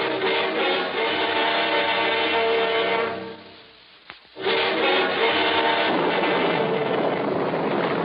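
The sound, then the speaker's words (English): A thunderstorm roars with a dense, steady wash of wind and rumble. It drops to a brief lull with a single sharp crack, then surges back at full strength. No voices. “And miss a storm like this?”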